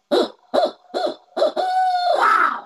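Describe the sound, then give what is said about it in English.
A person imitates an owl's hooting call to try to get a bird to gobble: four quick, clipped hoots in a row, then a longer drawn-out hoot that rises and trails off at the end. No one speaks. “That's my owl call.”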